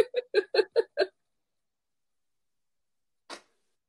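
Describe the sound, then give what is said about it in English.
A voice mimics the tiny, dainty sneeze some people make, like a little mouse hiccup: five quick, squeaky hiccup-like bursts in a rapid row, then a pause and one short, breathy puff, fairly soft. “Like this little mouse hiccup. They don't really sneeze. They're just like making this sound. Was that a real sneeze?”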